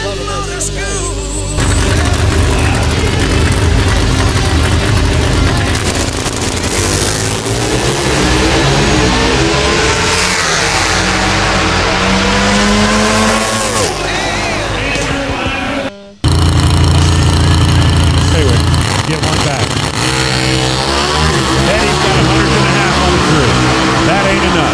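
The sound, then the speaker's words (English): A loud Pro Stock drag-racing motorcycle engine at an NHRA Pro Stock Motorcycle race revs hard, its pitch climbing and falling in repeated surges with a harsh roaring edge, cutting out for an instant before roaring back at full volume. “And for the first time since his older brother did it in 1998, Andrew Hines wins four of the first five races of the NHRA season in Pro Stock Motorcycle.”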